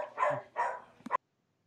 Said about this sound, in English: Okay, whose dog is trying to make an appearance tonight? That would be Wilfred